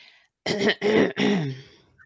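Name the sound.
cough and throat clearing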